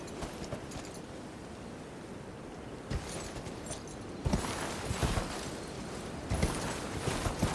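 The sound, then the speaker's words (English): Horse hooves clip-clop in an uneven run of hollow knocks over a steady background hiss, growing louder and more crowded partway through, with no voices, as a horse tries to balance on something high up. “Let's see if our horse can balance on it.”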